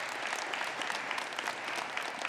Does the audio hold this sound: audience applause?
yes